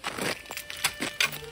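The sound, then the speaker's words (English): Keys jangle, a quick flurry of bright metallic clinks and rattles with a couple of sharper jingles near the end, as someone uses the keys to unlock a shotgun, heard alone without any talking. “He turned away from me and used his keys to unlock a shotgun, pulling it free before choosing the compartment.”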